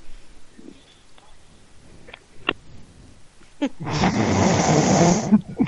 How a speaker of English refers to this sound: Hey, at least we know you're breathing.